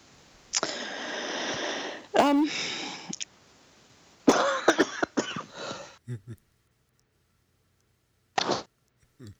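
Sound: coughing fit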